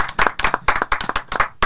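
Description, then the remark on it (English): A short burst of applause welcoming guests from Sands United of the Oakbourne Coronation League: several people clapping in quick, uneven bursts, fairly loud and bright, with no talking over it. “Round of applause.”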